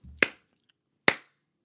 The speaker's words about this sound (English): That's my Heath Ledger clap.